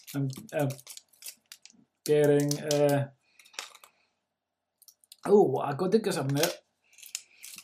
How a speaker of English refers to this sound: I'm getting... what am I getting? I'm getting frustrated at this wrapping paper. This, God.